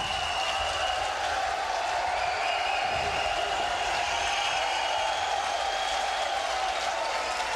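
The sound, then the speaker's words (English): Sustained applause from an audience fills the whole stretch, a dense, steady wash of clapping at even loudness with no pauses and no clear voices rising above it. “You people should shut the hell up. We don't need your applause.”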